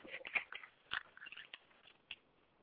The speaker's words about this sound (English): It's raining here in Delaware, Ohio. Hang on a second while I unlock my door.